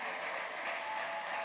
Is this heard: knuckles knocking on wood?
no